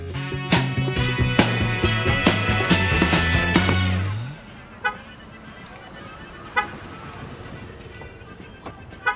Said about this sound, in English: We get it, bruh. Your car has an alarm. Congratulations, it's fancy.